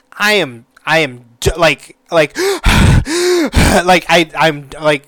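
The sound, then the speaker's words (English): A voice imitates heavy panting after running up and down stairs with a child on the shoulders: a rapid series of loud gasping breaths, some breathy and some voiced, coming in an uneven rhythm for several seconds. “I was running up and down the stairs maybe twice, three times, and I was wind dead, like breathing heavy.”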